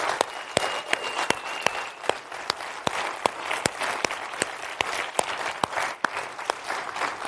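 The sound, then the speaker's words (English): A church audience applauds steadily to honor their student pastor and senior pastor, with dense, sharp claps crackling throughout and a few louder individual claps popping out above the wash, sustained for several seconds without speech. “So if you love your student pastor and your senior pastor, let's just give a round of applause here.”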